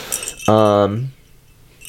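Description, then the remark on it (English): A small silver bell with stars and snowflakes cut into it rings with bright, high, shimmering clinks that sustain and fade, while a low voice briefly hums partway through the ringing. “So if you're just an audio listener, it's a silver bell.”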